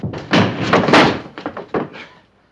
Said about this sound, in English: And then we crashed through this wall over here.